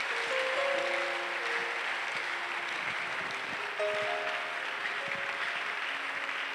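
An audience claps steadily at the close of preaching, a dense, continuous wash of applause at a fairly even loudness, with a few faint sustained tones sounding beneath it.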